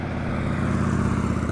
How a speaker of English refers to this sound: Here comes a larger motorcycle.